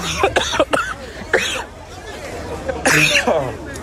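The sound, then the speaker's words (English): Several people cough and clear their throats in harsh, ragged bursts after being tear gassed, amid a noisy crowd with overlapping voices and babble in the background, the coughs loud. “I don't know what it was that they just blew up, but this guy, everybody coughing is.”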